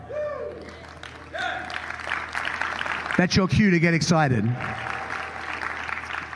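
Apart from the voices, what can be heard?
applause clapping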